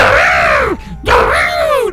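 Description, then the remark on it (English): A person's voice mimics African forest animal calls: two long, loud wavering cries that swoop up and down in pitch, separated by a short breath, with low rumbly noise underneath. “If you could sing nature sounds. All right. This is African forest.”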